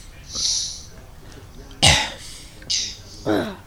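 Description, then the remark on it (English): A person coughs up cannabis oil roughly three times in short, harsh bursts, following a soft breathy exhale, with no talking over the sounds. “What did you cough?”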